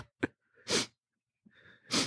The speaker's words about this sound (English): Now watch how I sniff. You hear that? You ain't hear that, did you? You ain't hear no mucus, none of that in my system.